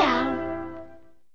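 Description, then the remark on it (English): A single drawn-out, cat-like meow sung in a musical tone, bending in pitch at the start and then slowly fading away, from a jingle in a commercial for Meow Mix cat food by Purina. A voice imitating a cat, heard alone without any talking. “Meow Mix tastes so good, cats ask for it by name.”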